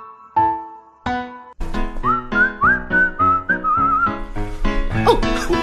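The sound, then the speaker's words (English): People whistle a clear, wavering melody that rises over steady instrumental accompaniment with bright chords, carrying a short tune for a few seconds before the music continues with brief whistle-like flourishes. “Looks like our whistling accidentally summoned the Prince of Darkness.”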